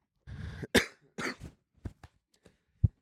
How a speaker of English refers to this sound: It's cough. What is coughing?